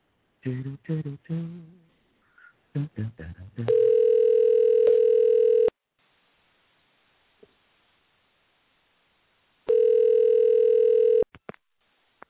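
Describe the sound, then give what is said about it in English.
A phone call rings out: two long, steady ringback tones a few seconds apart with near silence between, preceded by a brief burst of muffled, voice-like sounds and clicks. “Let's see if we can get on the phone here.”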